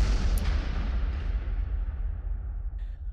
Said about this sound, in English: So you are sucked into the crystals, and you are gone as the ship crashes into the mountains.